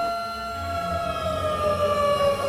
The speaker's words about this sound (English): The alarms still work.